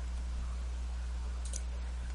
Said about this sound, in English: kind of sounded like they were a little chewed up on the edges, and so they're kind of making that clicking that like really old beaten up scissors will make, like grinding sound. It did not sound like scissors that would effectively cut my hair.